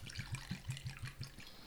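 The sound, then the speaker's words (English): Spirit glugs steadily out of a square bottle in a quick, even rhythm of about ten gurgles, fairly quiet, as 2 ounces are poured for a cocktail; no one talking. “And then we're going to take the Lobo here, put in 2 ounces of that.”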